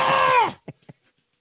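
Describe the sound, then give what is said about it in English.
A person imitates a woman's shrill, high-pitched screeching voice for about half a second, ending in a downward slide, followed by two quick, soft vocal bursts. “Who just enjoys videos and like seeing her fucking flapper gums that have sauce in her face with her fucking high pitched scream voice that makes you want to kill yourself.”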